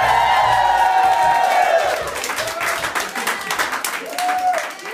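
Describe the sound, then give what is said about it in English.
A live studio audience bursts into loud, sustained applause with cheers and whoops during a radio broadcast on the campus of the University of Oregon in Eugene, Oregon, dense clapping filling the whole stretch and a few high shouts rising over it before it begins to thin out. “We're in Eugene, Oregon, on the campus of the University of Oregon, broadcasting in front of a live studio audience.”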